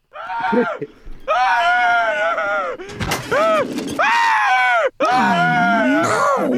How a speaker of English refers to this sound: And I like just hearing Homer screaming throughout the rest of this this clip here.